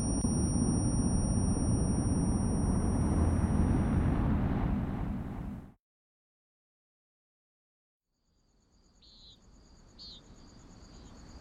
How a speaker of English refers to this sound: It was early morning. Birds were chirping, crickets were singing.